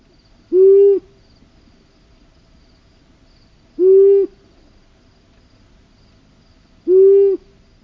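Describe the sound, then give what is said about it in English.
Three low, soft long-eared owl hoots repeat at steady intervals about three seconds apart, each a short tonal note standing out over a faint background of insect chirring. “They give a series of evenly spaced hoots ranging from 10 to 100 hoots in a row.”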